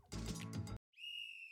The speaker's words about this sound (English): I just wanted to get the whistle in there.